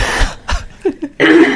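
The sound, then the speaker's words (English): A person clears their throat, with a few rough, gravelly bursts followed by a longer harsh rasp. There's no speech, just the loud, throaty sounds. “I'm going to take that opportunity to clear my throat.”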